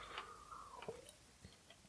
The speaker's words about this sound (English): Let's have another sip of this fucking liquid death.